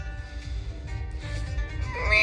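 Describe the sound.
A person vocally imitates the mating call of a seahorse at a camp, with a strained, wavering cry that sounds like a cat's meow, rising in pitch and loudness toward the end.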